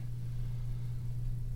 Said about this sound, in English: Oh, also, the fucking dryer's going. Let me stop that thing and see what happens. Because I can hear that. Let's see. Oh, yeah. Oh, yeah, that's totally the fucking dryer.